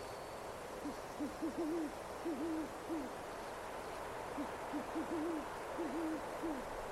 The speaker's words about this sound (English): You can hear the hoot of an owl.